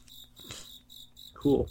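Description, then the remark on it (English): A cricket chirps in a steady series of shrill, high-pitched trills, prominent, with a brief burst of a lower voice-like sound near the end. “That's the worst Cricket I've ever heard.”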